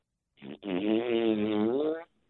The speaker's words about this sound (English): So until then, let there be farts.